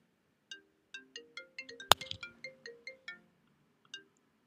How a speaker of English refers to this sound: I hope you didn't hear my phone ringing. That's the only thing you should not do on a podcast. So, sorry about that.